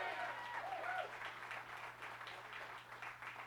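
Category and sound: crowd, audience applauding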